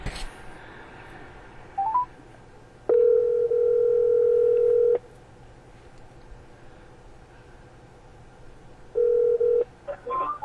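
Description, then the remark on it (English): A phone call placed from a car parked at Walmart for a DoorDash grocery pickup: a few quick dialing beeps, then a steady low-pitched ringback tone sounds for about two seconds, goes quiet for several seconds, and starts again over a faint background hum. “Alright, so I'm here, and they're saying to give them a call, so that's what I'm gonna do.”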